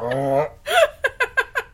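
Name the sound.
belch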